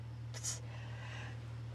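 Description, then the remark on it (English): A single quick sneeze, a short sharp burst that fades fast, over a steady low electrical hum with no talking. “Pardon. Bless you.”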